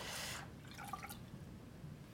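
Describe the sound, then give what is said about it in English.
A third of a cup of fresh lemon juice is poured into a measuring cup: a short, splashy rush followed by a few gurgling, dripping trickles. It is fairly quiet, with no voices. “1/3 cup of fresh lemon juice.”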